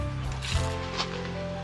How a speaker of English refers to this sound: This skin is crispy as a potato chip. You cut through the crispy skin on the top, you cut through the soft, beautiful fish, and it's just like velvet. But the crunch is the reason I love this dish. You can't taste this, but you can listen.